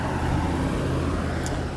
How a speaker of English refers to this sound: There's a lot of cars here.